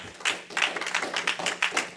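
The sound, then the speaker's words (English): An audience claps in praise of God in a steady, quick rhythm, about three claps per second, many hands together and fairly loud, with no one speaking over them. “Give God a good hand clap of praise.”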